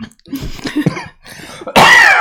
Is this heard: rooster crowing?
no